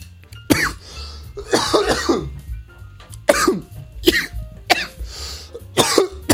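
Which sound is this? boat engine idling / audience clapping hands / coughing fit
coughing fit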